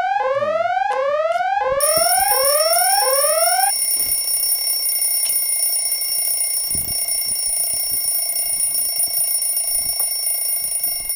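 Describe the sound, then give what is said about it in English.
An electronic alarm clock going off loudly, first with rapid repeating upward-sweeping beeps for a few seconds, then settling into a steady, piercing high-pitched ring that continues to the end. No one speaks. “Something like a alarm clock's going off.”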